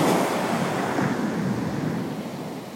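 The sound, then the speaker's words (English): Ocean waves wash and break on a shore in a steady, full roar of surf that swells and then slowly recedes, with a breezy hiss over it and no voices. “Comes in waves, one after each other, with no rush.”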